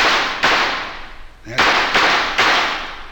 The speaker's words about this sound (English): He might hear gunshots and recognize the signals. I'll try a few shots into the air.